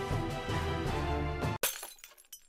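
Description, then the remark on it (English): Glass shatters in one sudden, loud crash right after a full musical passage cuts off, followed by a second or so of scattered tinkling shards settling. “Let's bust through that glass ceiling.”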